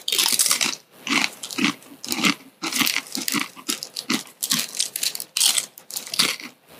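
Loud, wet crunching and chewing of food in irregular bursts, with crisp bites and mouthy smacking sounds repeating throughout and no talking; a hot-tasting item eaten in two bites during an eating contest.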